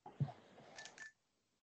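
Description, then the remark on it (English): Two quick telephone keypad beeps sound after a brief rustle and thump of handling, then everything falls silent. “Well, welcome back from your phone conversation there,”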